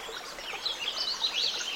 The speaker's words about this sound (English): But this forest of noise also made my arrival to the banks of this mountain stream that much sweeter.